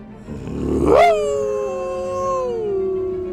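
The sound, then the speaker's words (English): A voice imitates a deep, growling howl, starting as a rough growl that rises to a loud peak, then holds and slowly drops as a long wavering tone. Alone, with no speech. “and give it a real deep growling howl.”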